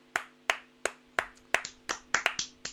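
A brief round of applause: about a dozen sharp, distinct claps in an uneven rhythm that quickens toward the end, with no voices and only a faint steady hum underneath.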